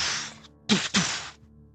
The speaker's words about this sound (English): Palm trees begin falling down with a heavy thud as you wipe your eyes to find what's going on.